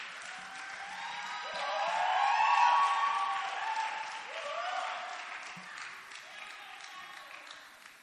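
An audience claps their hands in a dense, continuous patter, mixed with raised voices and cheers, swelling to a peak partway through before easing slightly and carrying on.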